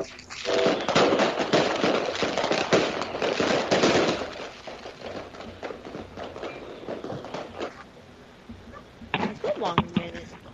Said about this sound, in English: I want to show her these fireworks.